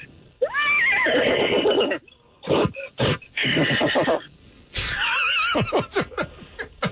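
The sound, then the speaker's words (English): A person imitates a horse, giving a loud, quavering whinny, then a few breathy snorts, and a second shrill whinny that trails off in sputtering huffs. It is clear, with no talking. “Let's do some, what was it, a horse impression, and what was the other one?”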